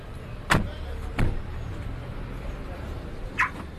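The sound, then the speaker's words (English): A sleek car rolls slowly into a parking lot at a hotel in Tambarare with a steady low engine rumble, broken by three sharp clicks or knocks spaced unevenly over a few seconds. “a few high-rise towers away, a sleek car was just driving into a parking lot at one of the most prestigious hotels in Tambarare.”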